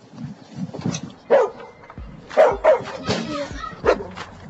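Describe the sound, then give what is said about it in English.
A pet dog barks several times in an uneven series of short, sharp barks and yips, loud, over some background noise, with no one speaking. “This is my dog, Ferocious. You know why he got that name if you hear him bark.”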